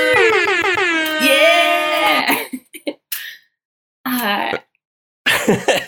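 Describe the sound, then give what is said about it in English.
A voice imitates an air horn: one long, loud, buzzing blast lasting about two seconds, followed by a few short, clipped honk-like bursts with pauses between them. “Oh, air horn, frum frum frum.”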